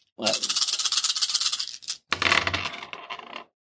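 Dice rattle loudly in a dense, clattering burst for over a second, a brief pause, then a second scattering rattle as they tumble and settle.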